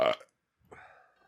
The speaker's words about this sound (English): That was a better burp than last time. It was.